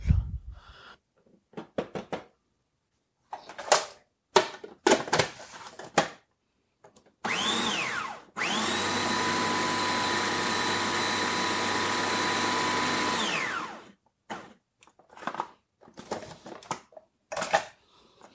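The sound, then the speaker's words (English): Scattered clicks and knocks, then a food processor motor whirs up in a short burst and runs steadily for several seconds, pulsing butter and crumbs into a mixture to press into a pie pan, before winding down, followed by more light clatter. “Now the butter just gets poured in with the crumbs, and then we're going to pulse it a few times until we get something that can be pressed into place in the bottom of the pie pan.”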